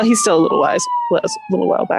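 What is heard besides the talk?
police car siren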